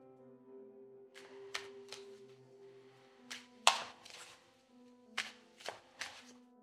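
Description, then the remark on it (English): Tarot cards being shuffled in a series of quick, crisp riffling bursts, some in pairs, over a soft steady hum, with no talking. “I really wish I was better at shuffling.”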